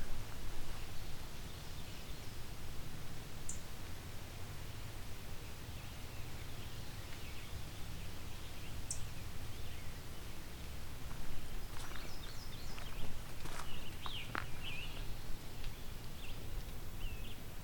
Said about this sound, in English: I've got a ticking blue-wing warbler in front of me.